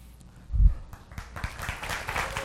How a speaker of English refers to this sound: Wow, they want you out of here. Listen to them clapping for you going.